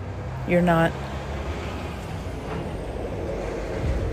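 A big truck rumbles past, letting out a brief, sharp air-brake squeal near the start before its low engine noise carries on steadily.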